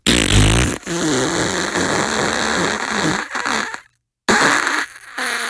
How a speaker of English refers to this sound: The guy's just over here farting like they're trying to have a conversation.